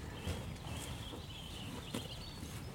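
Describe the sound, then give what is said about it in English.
Cows graze close by, a steady rustle of tearing grass broken by a few soft thuds of shifting hooves, with a faint high outdoor whine in the background and no voices. “We are now surrounded by cows. It's lovely. I love that sound of grazing.”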